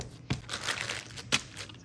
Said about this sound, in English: Fold it up in the baking paper and then pop it into the fridge.